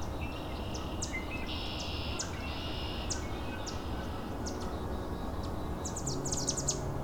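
Three yellow warblers squabble in quick bursts of high, thin chips and buzzy notes, ending in a rapid chattering flurry, all over a steady low rushing background noise.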